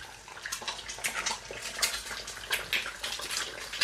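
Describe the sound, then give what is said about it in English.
Two eggs fry in a pan with a steady, hissing sizzle broken by dense, irregular crackles and pops as their edges crisp, bright and fairly even in loudness throughout, with no talking. “And you can hear that really nice kind of crispy crackling sound.”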